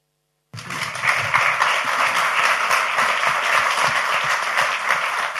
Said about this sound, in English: Do not want to interrupt spontaneous applause.